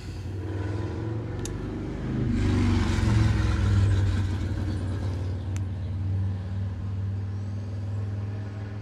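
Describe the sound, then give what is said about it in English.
A motorcycle engine down the street rumbles steadily, swelling as it revs around the middle before settling into a continuous low drone, with a couple of faint clicks and no talking. “It's somebody's motorcycle. I have no clue. It's, like, down the street.”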